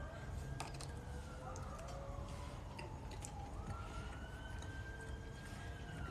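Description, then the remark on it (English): The siren of paramedics going through the area wails steadily, its pitch sliding up and down in long sweeps over a dense, noisy background rumble, with a few faint clicks and knocks scattered throughout. “You hear these alarms?”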